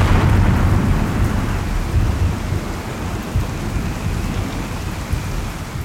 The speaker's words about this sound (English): And of course, that night, there's a huge storm.